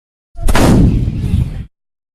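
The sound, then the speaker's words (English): A single heavy artillery blast booms out with a sharp crack, then a dense, roaring low rumble that holds for about a second before cutting off abruptly. It is loud and stands alone, with no talking. “So you have somebody who don't walk well that can ride your scooter and have artillery. Kaboom!”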